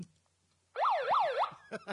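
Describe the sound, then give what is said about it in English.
A loud alarm siren sound effect wails in quick up-and-down sweeps, about two and a half cycles in under a second, cutting off abruptly and followed by a couple of short bursts. “Hit the midget alarm.”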